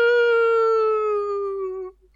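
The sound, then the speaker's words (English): A voice imitates a firework with a single sustained, rich tone that starts abruptly and slides slowly downward in pitch for about two seconds before cutting off. “No, that Thank was a firework going off in the air.”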